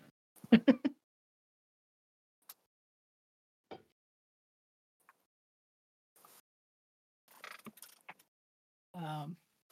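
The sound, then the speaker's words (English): A short creak opens, followed by scattered faint mechanical clicks and a rattling cluster, like a lock being worked and a door easing open, ending with a brief voiced sound. “I'm just going to try and open the door.”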